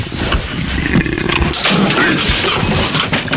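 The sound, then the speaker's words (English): A leopard that has escaped from a zoo growls deeply and steadily for a few seconds, a loud, rough, rumbling snarl that stays continuous, with no talking over it. “We're live from the zoo where a leopard has escaped.”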